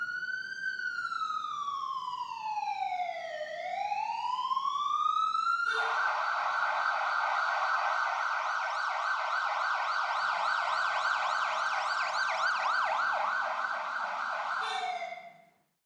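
An ambulance siren sounds loud, starting with a slow rising-and-falling wail, then switching to a rapid warbling yelp that continues steadily until it cuts off.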